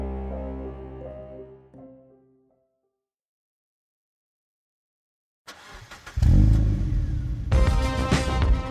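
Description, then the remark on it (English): A brand-new bright blue 1986 Mustang's engine hums at idle in an arcade parking lot with steady low harmonics, fades into silence, then roars back loudly as it revs up and holds a rough, high-pitched growl. “The purr of the engine was almost loud enough to drown out the pounding”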